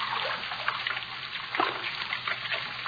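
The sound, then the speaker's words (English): A steady rush of running water, a continuous trickling flow with occasional small splashes, unbroken for the whole stretch, with no voices. “That sound. Running water.”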